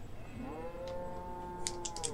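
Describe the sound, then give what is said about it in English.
A single long, low cow moo drawn out over about two seconds, steady, with a few faint clicking taps in the background near the end. “That cow is ready to go.”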